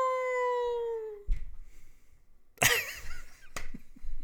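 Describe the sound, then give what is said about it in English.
A voice imitates a wolf howl: one long, steady, rich-toned wail that sinks slightly in pitch over about a second, then breaks off, followed by scattered loud, noisy bursts. “I'm so surprisingly good owl. It really caught me by surprise. It sounded like a sound effect from like a Halloween thing.”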